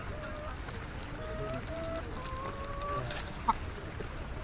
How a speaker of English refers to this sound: I remember passing a little rest stop with a peepal tree and a water spigot where a bunch of porters were taking a breather. Their cargo consisted of chickens in stacked cages, and the chickens were making the most unearthly, unchicken-like mewling